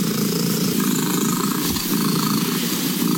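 An English domestic cat purrs loudly and steadily during an official attempt for the loudest purr by a domestic cat, measured at 54.6 decibels: a continuous rumbling drone with a low, engine-like throb that holds for about three seconds without pause or speech.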